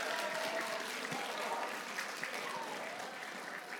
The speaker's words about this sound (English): Who started that clap?